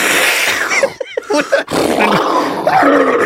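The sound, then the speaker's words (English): A person loudly imitates geese with a rough, strained honking voice: a harsh, noisy stretch broken by a few short, pitched honks in the middle, then more raspy squawking to the end. “They'll be walking around as geese, just going.”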